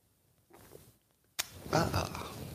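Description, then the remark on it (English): A loud slurping sip of hot coffee breaks a near-silence, followed by a breathy, satisfied vocal sound from the drinker. “It's called the simultaneous sip.”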